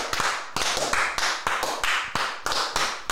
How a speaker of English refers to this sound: Come on, welcome. A round of applause.